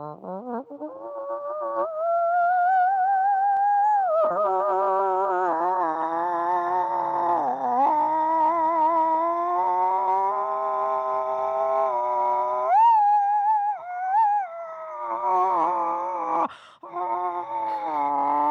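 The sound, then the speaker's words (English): A human voice performs a long, drawn-out whale call as the punchline of a joke about a whale walking into a bar, a sustained moaning wail that slides up and down in pitch for nearly twenty seconds with only brief breaks. “But, so, this whale walks into a bar. Mm-hmm. And the whale goes...”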